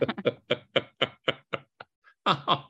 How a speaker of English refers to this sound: And he goes up there and then all of a sudden on his tour, knock, knock, knock. And he's like, what? And Russell is there.